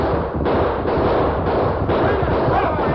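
Repeated gunshots crack out over a dense, continuous roar of noise, loud and steady from start to finish with no clear pauses, as five masked horsemen fire their guns on the old river road a few miles below Snake City.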